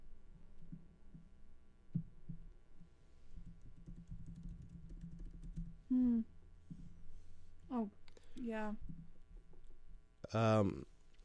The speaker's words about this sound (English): We're typing at rapid fire.